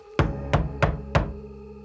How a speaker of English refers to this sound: Inside, the old church minister, Mose Wright, is jerked from his sleep by a bang at the door.